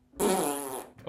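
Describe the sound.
A single loud, buzzy fart noise, blown with the mouth like a raspberry as a mock answer about what is wrong with Golden State, lasts about half a second and then trails off, with a short rustle right after.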